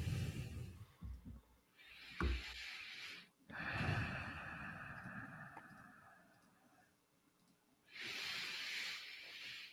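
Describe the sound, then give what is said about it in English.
Several slow, deep breaths, each a long airy rush with quieter hissy gaps between, plus a sharp sniff-like snort partway through; no one speaks. “Compelling, deep breathing podcasting at the moment.”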